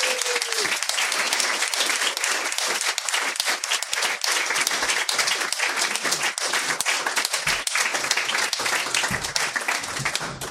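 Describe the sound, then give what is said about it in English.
Sustained, loud applause from a large crowd welcoming writer Peter Gould fills the whole stretch, dense overlapping claps with occasional whoops, steady and enthusiastic throughout with no talking. “We got a hot crowd tonight.”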